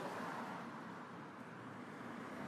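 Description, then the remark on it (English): A lone car on an otherwise quiet Sunset Boulevard in Hollywood as the sun goes down, its engine and tire noise a steady, moderately loud rush that holds level for a few seconds without a sharp swell or fade. “There's one car coming.”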